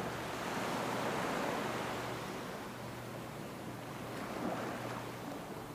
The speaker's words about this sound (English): The ocean waves crashing at your side.